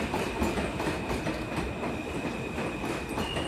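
train passing by

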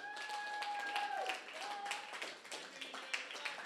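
audience clapping hands

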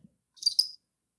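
cricket chirping

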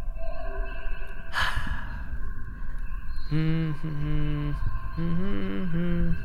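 person humming a tune

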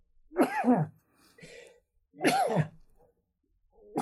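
sneeze

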